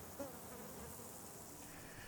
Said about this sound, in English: Look at these bees and thistles. Oh, yeah, they're just face down in heaven, aren't they?